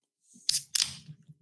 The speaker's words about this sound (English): I'm opening a beer and it did not spill on my keyboard.